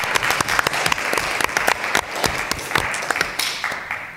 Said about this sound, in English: Okay, so having said that, since I'm the last person to go, I want to ask everyone to join me in applauding the efforts of the people who made this conference possible. So let's give them a hand.